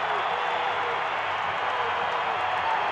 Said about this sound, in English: Crowd on their feet.